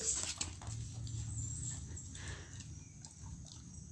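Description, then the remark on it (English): A dog chews on a stick, with a steady run of soft crunching and gnawing clicks over a low background rumble and no barking. “The chewing on a stick dog.”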